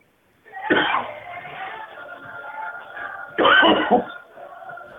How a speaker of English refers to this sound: I don't think the sheriff's office would have a guy just hanging out there at the phone coughing a bunch. All right, there he goes.